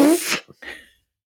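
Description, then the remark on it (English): A squelchy hand fart made with cupped hands blurts out in a short, sputtering burst, followed by a second brief, breathier squeak after a tiny pause. “And then we get to see Ted in all his douchiness, and they all start doing these hand farts, which everyone loves.”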